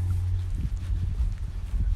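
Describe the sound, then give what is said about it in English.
A Rolls-Royce Merlin engine on a two-seater training Spitfire drones overhead as it flies over, a steady, loud, low-pitched rumble with a throbbing pulse running through it, and no voices. “It's a Rolls-Royce Merlin powering a Spitfire. It's just flown over.”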